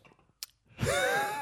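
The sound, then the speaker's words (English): A quick sharp slurp-like burst, then a loud, drawn-out shuddering groan with a wavering pitch, as a person recoils after a sip of a 7% black oat IPA beer. No words are spoken. “The shiver you made, man, signifies.”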